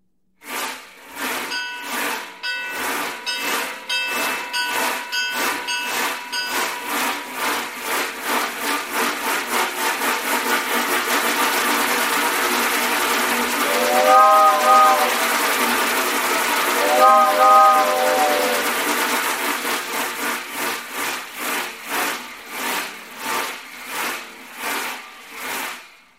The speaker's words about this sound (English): But I'll give you an example of a train going by.